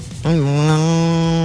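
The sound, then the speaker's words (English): A person's voice imitates a cow at the Washington Town and Country Fair, giving one long, loud, steady moo that begins abruptly and holds its low droning pitch to the end. “try it again. Moo.”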